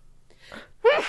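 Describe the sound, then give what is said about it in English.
A single loud sneeze: a short breathy intake builds up, then a sudden explosive burst that trails off quickly, with no talking. “Oh my goodness, I have to sneeze.”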